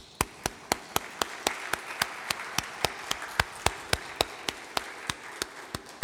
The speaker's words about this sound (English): And you deserve a hand clap of praise for being here for service day. Take a minute. Give yourselves a hand clap of praise. Come on.